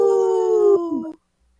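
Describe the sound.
People imitate a wolf howl together on Native Roots Radio, in a segment supported by Howling for Wolves, a loud, sustained wavering tone lasting about a second that dips in pitch at the end before cutting off into silence.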